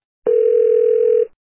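A steady telephone dial tone hums alone for about a second, clear, starting and stopping abruptly with no voices.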